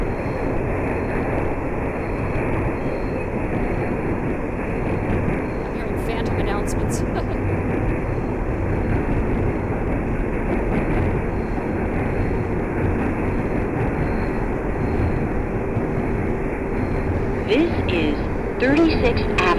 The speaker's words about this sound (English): This is a Manhattan-bound Q local train.